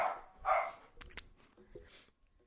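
animal, dogs barking

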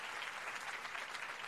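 crowd, applause sound effect

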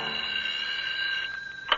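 signal or alarm, telephone ringing

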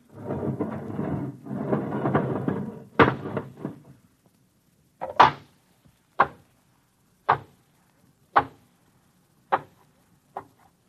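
sound effect, airlock inner door opening

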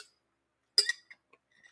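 household object, glass clinking

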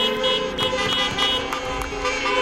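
vehicle, car horns honking

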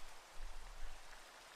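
nature, rain falling

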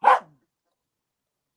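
animal, dog barking

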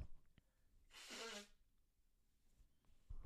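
human body sound, blowing nose

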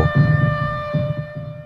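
signal or alarm, tornado warning siren

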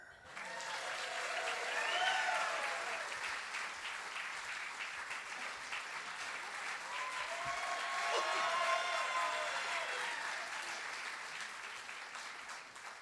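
crowd, audience applause

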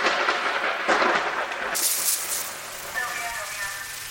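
sound effect, thunder sound effect

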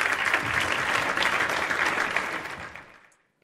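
crowd, applause

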